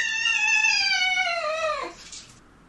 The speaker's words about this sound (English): It just, none of these clips sound pleasant. I'm never going to look at a cat the same.